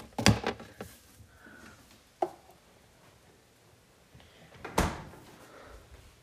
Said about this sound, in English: If I should open the door.